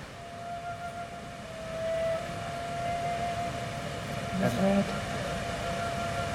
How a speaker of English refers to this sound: We should hear that bell ring very shortly. Let's listen in.